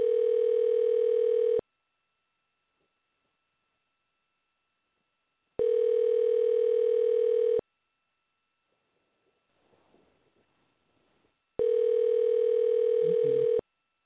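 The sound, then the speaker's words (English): A steady telephone tone sounds in three loud, even bursts of about two seconds each, separated by quiet gaps, with faint rustling in one pause. “Okay, so I'm actually getting kind of mixed up here with too many phones and too many dialings.”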